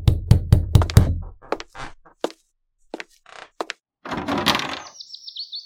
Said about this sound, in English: Stop knocking on that roof now. Gentle hands.